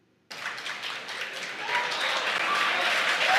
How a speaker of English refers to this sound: You hear the crowd cheer behind me.